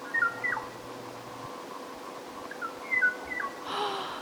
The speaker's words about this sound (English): Oh, that's such a pretty bird call.